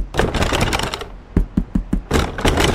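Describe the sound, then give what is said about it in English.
Loud, hurried knocking on a hut door: a quick burst of about five sharp raps in a row, set against a steady wash of noisy background sound. “Smitty and Louie are sitting in their hut, reading papers, awaiting their next task to arrive, when the hut door is rapped loudly and impatiently.”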